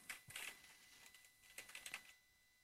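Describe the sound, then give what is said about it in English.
Quick bursts of typing on a computer keyboard into an open Word document, two short clusters of soft clicking keystrokes separated by a brief pause, fairly quiet with no voices. “I've got the dialog open, and let's press typing for just a moment.”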